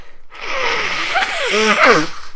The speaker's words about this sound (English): There you go. A bit of a comedy nose blow there.